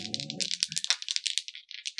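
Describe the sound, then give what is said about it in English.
A handful of plastic and metal dice rolled for attack rolls in a tabletop role-playing game, rolling and clattering in a dense run of sharp, bright clicks that continues for two seconds, with a low rumbling thud under the first half. “I'm rolling a mix of plastic and metal dice.”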